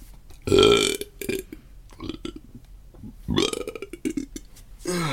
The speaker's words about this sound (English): hang on, I've got a burp.